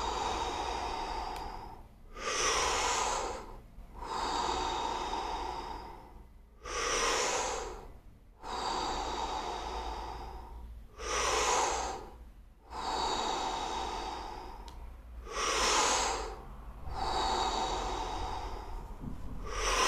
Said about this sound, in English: So, let's start with breathing in the mouth. I will give you like the tempo, and again, when you breathe in, new energy, when you breathe out, a release of all the old energy. So, here we go, breathe in and breathe out. In. Out.